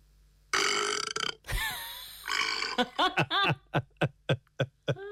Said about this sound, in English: Okay, Google. Make a burp sound.